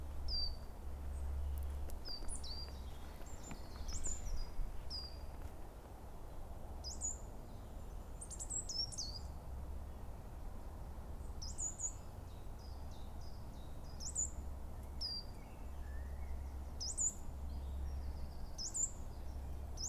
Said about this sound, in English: That was a coal tit calling and moving through the branches. It's gone now.